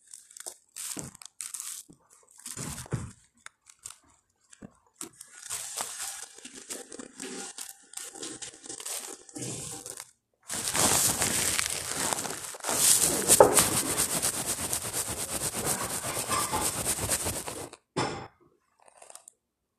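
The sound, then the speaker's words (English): Crisp, wet crunching from someone chewing water chestnuts, with bursts of bites and steady chomping, then a louder, denser stretch of crunching before it tapers off. No talking. “The water chestnuts are good too.”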